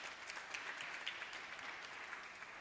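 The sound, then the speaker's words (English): A church audience claps together in a steady, dense patter of many hands, clapping if they have heard of the seven deadly sins, holding an even loudness for a few seconds without voices. “Clap if you have ever heard of the concept of seven deadly sins.”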